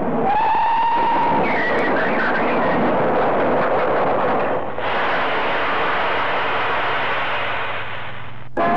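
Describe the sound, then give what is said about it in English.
A train brakes hard as an elderly man walks onto the line: a sharp metallic squeal rings out at first, then a loud, sustained grinding roar of wheels and rumble fills the scene before cutting off abruptly. “Here, put on them brakes!”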